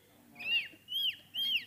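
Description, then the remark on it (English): A person imitates a seagull's cry with three quick, high, arching squawks in a row, clear, with no other talking. “And they were bringing up all these people imitating seagulls.”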